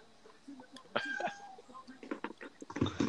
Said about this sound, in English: Cat. Yeah. I thought that was a chicken for a second. Jesus, what's wrong with that cat?